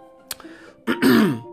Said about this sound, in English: And I'm sorry to keep clearing my throat, but it's because I'm still, you know, still dealing with this. It's been 2 weeks, but some patients deal with this stuff for months.